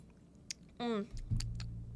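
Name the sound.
drinking water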